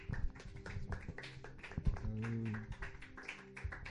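An audience applauds steadily for about four seconds, a dense patter of many hands clapping at once with a low steady hum beneath it.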